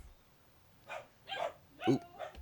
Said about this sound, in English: Ooh, hello. Sorry, dog barking. Hey. Yeah. All right. It's a familiar sound.